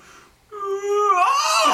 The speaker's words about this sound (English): The night moves on for a little bit, so you begin to feel tiredness in your bodies as you decide to forego any sleep. I'll give you a yawn in character.